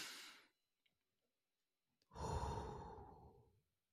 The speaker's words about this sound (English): It's just breathing, focusing on your breath, taking 5 minutes a day, sitting somewhere, cutting off all the noise, and just literally breathing in and then breathing out. Deep breaths.